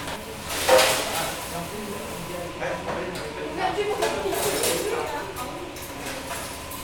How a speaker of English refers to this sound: Volunteers are cleaning the dishes. They handed out almost 80 meals today.